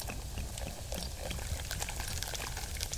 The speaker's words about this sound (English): Fresh bubbling mineral water from the mountain spring.